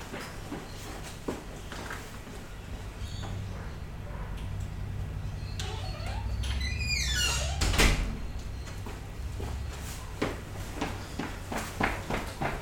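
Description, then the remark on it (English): A front door swings shut with a rising creak of the hinges and lands with a solid thud, surrounded by soft shuffling and handling noises. “Sorry, I had to close the front door.”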